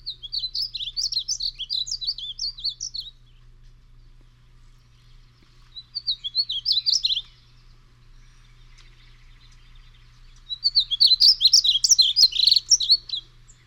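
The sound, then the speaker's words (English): Three bursts of a painted bunting's song: quick, high, sweet warbling phrases, each lasting a few seconds, separated by pauses, with a low steady hum underneath and no talking. “We're going to cover the painted bunting.”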